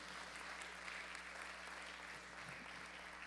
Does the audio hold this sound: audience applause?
yes